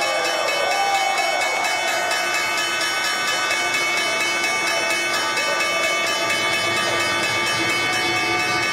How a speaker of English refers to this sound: First Move live from the New York Stock Exchange, and that was the opening bell this Monday, a higher open as anticipated as we begin this holiday shortened trading week.